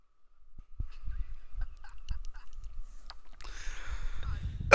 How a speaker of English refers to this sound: I still can't get over this fucking cough and shit.